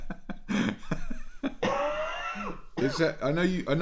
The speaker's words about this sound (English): I know you tried to cough away from the microphone there. I felt like you coughed directly into the microphone.